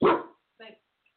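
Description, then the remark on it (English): A dog named Bailey lets out one loud bark at somebody outside, followed by a shorter, quieter second bark, then silence. “Yeah, he's playing guard dog. Apparently there's somebody outside.”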